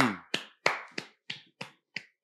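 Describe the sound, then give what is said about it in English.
Eight sharp, crisp hand claps in a steady, fairly quick rhythm, each one a bright slap that fades quickly, with no voices between them. “And a round of applause for”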